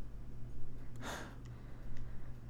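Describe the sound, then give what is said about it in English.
A single short, breathy sniff at the microphone as someone smells brandy from a glass, over a low steady hum with no talking. “Let's give the brandy a snifter.”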